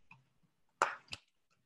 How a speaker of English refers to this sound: So we'll start with the oracle cards. So I'm just going to give them a good shuffle and then you let me know when it feels good to stop. You just say stop.